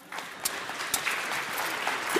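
An audience breaks into applause for a participant, a dense wash of many hands clapping at a steady level throughout, sustained for a couple of seconds.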